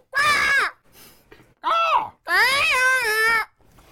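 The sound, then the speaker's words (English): A person imitates a crow with three loud, harsh, strained caws, the last one longest and wavering, with brief quiet gaps between them. “Oh, we're just doing the whole thing in crow call.”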